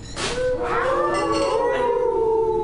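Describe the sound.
A person imitates a wolf howl: a loud, drawn-out vocal tone that swoops up, then holds and slowly sinks for a couple of seconds, with no other talking.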